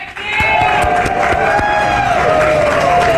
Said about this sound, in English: What a great crowd today. Best of the week.